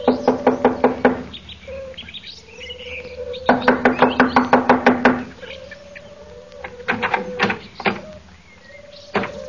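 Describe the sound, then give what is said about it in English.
Two quick bursts of sharp knocks on a door, each a rapid run of about eight to ten raps, followed by a few scattered single knocks, with no one speaking. “I'll knock on the door.”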